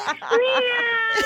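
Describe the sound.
Several voices on a radio show imitate a cat together, a drawn-out, wavering meow sustained for about a second, loud and slightly uneven as the voices overlap.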